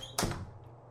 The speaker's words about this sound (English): Roll as I open the door.